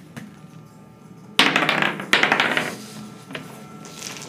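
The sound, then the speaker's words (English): Knocking on a wooden door: two sharp, loud raps about a second apart, each ringing briefly, then a few fainter taps trailing off. No voices are heard. “We're going to knock. You knock.”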